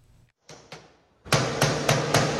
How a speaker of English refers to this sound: Mr. Wang sits in a chair and bangs the safe with a hammer. It took about 40 minutes for him to open the safe.